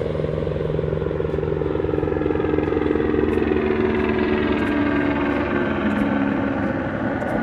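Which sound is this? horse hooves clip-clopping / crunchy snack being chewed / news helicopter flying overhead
news helicopter flying overhead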